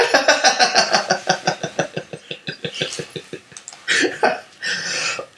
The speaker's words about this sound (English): Are you going to be coughing over this whole thing? I can't help it. Cough pod. Cough pod.